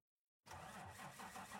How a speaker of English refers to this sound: The doors closed and the bus started again. Black smoke poured out of its tailpipe. Slowly, the bus chugged along and out into the horizon, turning into a little speck.